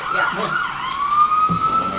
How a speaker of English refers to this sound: This is the day of all the sirens. I'm sorry.